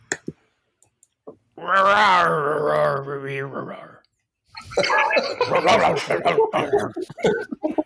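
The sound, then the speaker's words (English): A human voice imitates an animal with a little reverb: first a long, loud, wavering roar lasting a few seconds, then after a brief pause a rough, rattling growl that pulses unevenly until the end. “That's the key because he growls after he roars.”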